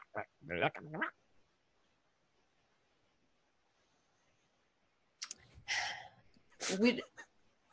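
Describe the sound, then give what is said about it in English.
A voice imitates a creature's odd chirping chatter in a strange language, a larger red creature chirping to a smaller green one after prodding it: a quick burst of clicky, warbling noises, a pause of several seconds, then a second round of squeaky, gurgling chirps, fairly loud. “One of the big red one, the red one is a bit larger than the four green ones, and it kind of prods one of them and it chirps to it in this strange language.”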